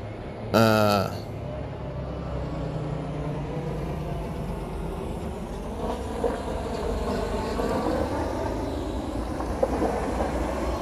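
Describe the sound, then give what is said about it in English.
A heavy truck drives by with a steady, loud low-pitched drone, opening with a short horn-like blast before the engine noise continues throughout. “I got a truck coming in. It's going to be a little loud.”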